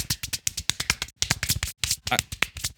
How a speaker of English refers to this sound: He's big clapping. He's big clapping right now.